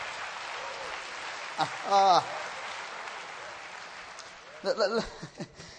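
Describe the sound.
An audience claps for the Lord in a dense, even wash of applause, with a couple of short voiced shouts or cheers rising above it partway through and near the end.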